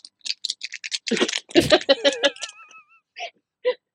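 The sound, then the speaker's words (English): A zipper on a piece of Hello Kitty stationery merchandise is zipped and unzipped in several quick, scratchy strokes, then laughter and giggling break out, with a couple more short zips at the end. “So yeah, you got a little bit of zipper ASMR going on over there.”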